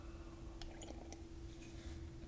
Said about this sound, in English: In fact, let me take a sip of my tea.